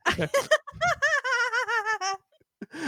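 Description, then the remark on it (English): A chair squeaks sharply as someone springs up, a quick run of high, wavering creaks lasting about two seconds, fairly loud, followed by a brief pause and another short creak. “He just jumped out of his chair like with the most speed.”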